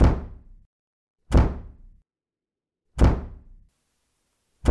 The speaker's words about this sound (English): It sounds like the front door's banging in the wind. Oh, it is. How'd that get open?